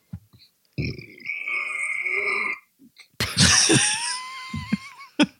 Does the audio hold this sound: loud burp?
yes